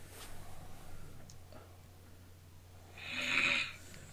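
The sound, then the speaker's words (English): A man's wife snores once in her sleep, a single raspy, breathy snort rising and fading over about a second, against a quiet background with a low steady hum. “watch the video of her, not her, but of the dude that took a video of his wife snoring, and he had the little airplane, and then every time she snored he would put the airplane in the camera like it was flying by.”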